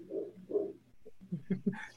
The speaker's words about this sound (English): Can you guys hear that dog? Somewhere in the distance, yes. A dog barks. Is that your dog? Right. No.